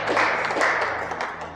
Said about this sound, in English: We have shared, can we clap hands unto the Lord? Amen.